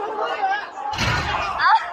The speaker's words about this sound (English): Come on, guys! There's like a whole bunch of young men. Break the damn door. There we go.